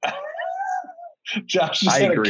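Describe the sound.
A single drawn-out cat meow, wavering and sliding downward in pitch for about a second, followed after a short pause by loud talking voices.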